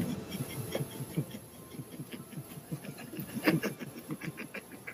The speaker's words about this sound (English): The main arcane engine begins to hum very loudly, and all of you feel the airship begin to lift out of the water.